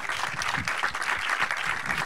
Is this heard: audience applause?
yes